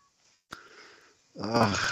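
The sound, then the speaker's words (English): A pet cat gives a single drawn-out meow, rising and falling in pitch, following a sharp click and a stretch of quiet. “My kitty.”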